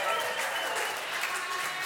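A church audience claps steadily after a Bible reading in a dense, continuous wash of applause, loud and sustained for the full couple of seconds, with no clear pauses or individual voices standing out.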